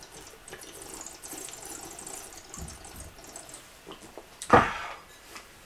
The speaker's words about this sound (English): And he does the wine whistle with coffee. That was actually me swirling it in my mouth for different mouth aeration. That's close enough. This would be doing the wine whistle with coffee.